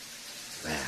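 A brief, steady hiss of running shower water, close and moderately loud, swelling near the end as a voice seems to rise into it.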